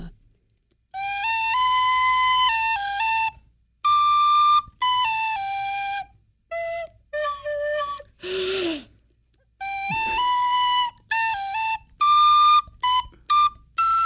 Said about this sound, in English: Well, I've been practicing on my tin whistle.